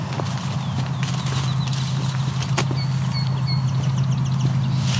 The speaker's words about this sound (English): that's just a song sparrow singing now.